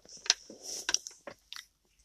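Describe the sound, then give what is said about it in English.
Wet mouth noises of chewing and slurping, with several short crunchy, smacking bursts spread irregularly over about two seconds, quiet overall and with no talking. “I can hear you slurping.”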